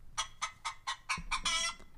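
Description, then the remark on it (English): A run of about seven quick, bright clucks from chickens in a steady rhythm, ending in a longer, louder squawk-like cluck, with faint low rumble underneath and no talking. “Chickens, they're attracted to it. The chickens are attracted to the juices.”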